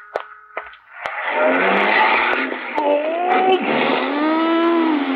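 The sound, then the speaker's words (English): A car roars in street traffic, its engine loud and steady for several seconds, with whining, sliding tones like squealing tires, after a few sharp clicks at the start. “A lot of traffic today. Four cars and a bicycle.”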